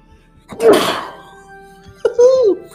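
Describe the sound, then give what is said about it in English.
A single forceful sneeze during a call bursts out with a sharp, breathy hiss, followed after a short pause by a brief voiced sound. “I cannot believe panoramic that you just sneezed on a call.”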